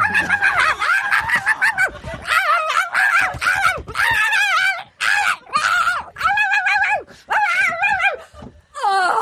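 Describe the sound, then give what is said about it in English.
A person's voice imitates dolphins, squealing out a rapid, continuous string of high-pitched, squeaky yips and chirps like puppies. The sounds are loud, with only brief breaks between bursts. “Dolphins imitating puppies.”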